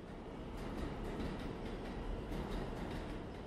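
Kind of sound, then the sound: vehicle, subway train sound effect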